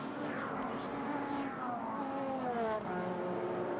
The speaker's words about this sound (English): the AF Corsa LMP2. This is the Francois Perraudeau, Mathieu Vaxvier and Emmanuel Collard car, spinning the wheels whilst on the jacks